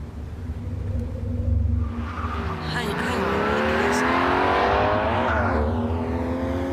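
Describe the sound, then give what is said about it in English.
A car engine rumbles low, then roars louder and climbs in pitch as the car speeds toward a person at a crossroads without stopping, its revving whine sweeping upward and filling the last few seconds. “By the time I realised the car wasn't going to stop, it was too late.”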